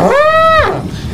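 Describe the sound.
A person's voice imitates an elephant trumpeting: one loud, brassy, sustained blare that holds steady for about half a second and then slides downward. There are no other voices.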